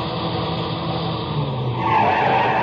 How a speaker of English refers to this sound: I heard the whine of a car coming over the rise in the rough road as the first glimmer of the headlights stabbed the darkness.